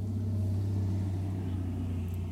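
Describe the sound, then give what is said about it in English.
A large wagon rumbles past outside a car, its deep, steady engine drone filling the cabin for a couple of seconds with no voices. “That's a wagon going past.”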